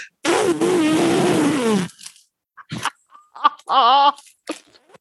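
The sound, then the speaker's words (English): A person loudly imitates an elephant's trumpet with a long, raspy, wavering blast, followed by a few short vocal bursts and a brief higher warbling call. “But if I make like an elephant noise, he acts like someone's killing him.”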